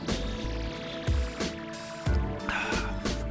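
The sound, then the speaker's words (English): Sips of water: a few wet slurps and swallows come in quick succession, with small liquid sounds between them and no talking. “I got to take a little sip of water here, man.”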